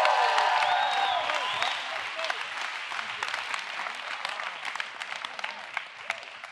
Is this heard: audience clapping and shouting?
yes